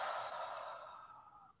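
A single slow, deep breath, soft, a breathy whoosh that gradually fades over a second or two, with no talking; an adult modelling slow breathing for young children, breathing in as if sniffing flowers and gently blowing out as if at birthday candles.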